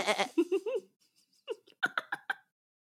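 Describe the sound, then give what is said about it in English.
A sheep gives a loud, quavering bleat, then after a short pause comes a quick series of clipped, rhythmic bleating bursts. “He's a sheep.”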